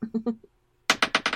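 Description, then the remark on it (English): A short murmur of speech, a brief pause, then a sharp clatter of dice tumbling across a hard table in quick, bouncing hits, rolled for an athletics check in a tabletop game. “No, that's the wrong dice.”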